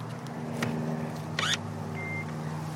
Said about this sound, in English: One's got an orange cap on top that I'm just going to open. This is on the front of the car, not the side of the car like a petrol cap. So now I have the cable and one end goes into the car.